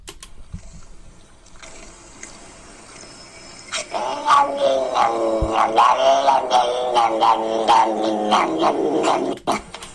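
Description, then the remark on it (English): A cat lets out a low, drawn-out growl that swells into a loud, wavering yowl, rising and falling steadily for several seconds before cutting off abruptly, with no one speaking. “That low, growly sound that cats sometimes make.”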